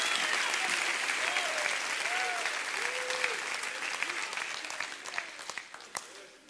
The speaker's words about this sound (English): Come on, clap your hands for that.